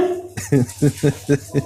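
A dog barks in a quick, steady series of about five short, moderately loud woofs, one right after another, with no talking over them.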